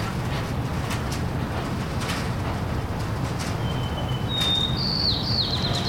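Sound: birdsong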